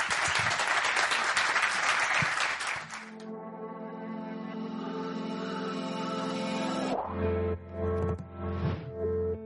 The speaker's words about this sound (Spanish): Muchísimas gracias. Un aplauso muy fuerte para...